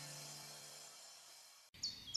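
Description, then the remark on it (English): Birds singing on a sunny day, with a few bright, high chirps that arrive suddenly after a steady hum fades. The chirps are short and fairly faint, and no one is talking. “The sun's shining, birds are singing, and all feels right in the world.”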